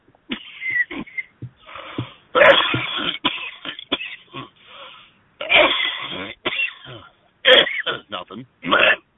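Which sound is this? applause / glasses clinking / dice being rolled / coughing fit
coughing fit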